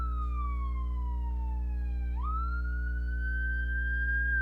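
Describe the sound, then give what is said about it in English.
An ambulance siren wails steadily as the vehicle passes by, its pitch sliding down and then lurching as it goes past, over a constant low rumble of traffic. No one speaks. “Ambulance passed.”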